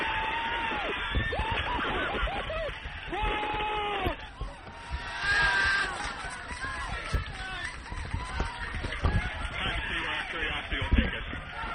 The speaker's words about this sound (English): Those were the sounds of celebration at NASA headquarters at the Jet Propulsion Lab in Pasadena, California, as Earth received the first signals from the Curiosity rover from its landing spot on Mars.